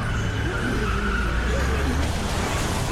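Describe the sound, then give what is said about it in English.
A pickup truck's tires skid and screech as its engine roars while it drives off, a loud, steady burst of grinding rumble and rough high squeal that carries on without a break. “They all climb into the pickup truck, which is free now, and they get the hell out of there.”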